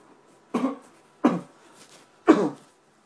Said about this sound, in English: Sorry, America, I had to cough and, you know, it happens. People need to cough. I don't want to cough into the microphone, but I had to cough and there's no mute button on this voice recorder, or else I would mute it.